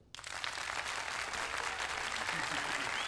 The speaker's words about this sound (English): Yeah, that home does really deserve a round of applause.